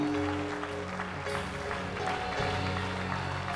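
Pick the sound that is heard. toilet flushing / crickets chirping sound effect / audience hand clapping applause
audience hand clapping applause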